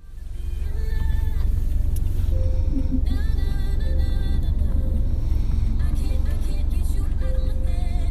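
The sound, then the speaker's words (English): Muffled music with sustained melodic notes plays inside a moving car, half-buried under a constant, heavy low engine and road rumble for the whole stretch. “I'm going to play you a little snippet of what I was hearing in the car.”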